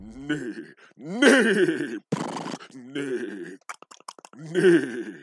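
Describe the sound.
A person vocally imitates a horse whinny, producing several loud, strained, wavering neighs broken by a harsh breathy rasp and short clicking pauses.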